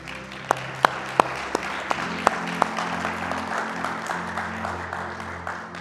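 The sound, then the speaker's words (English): A crowd applauds steadily, a dense wash of clapping with a few sharp, louder claps standing out near the start before the sound settles into an even patter. “And I appreciate the applause, but I don't say that for the praise.”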